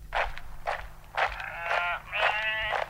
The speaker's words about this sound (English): no shepherd in sight, and they're going around in a circle for 12 consecutive days, about 20 sheep in the circle. They're not eating, they're not drinking, they're not sleeping, they're just strolling in the same circle, and we've found audio of it.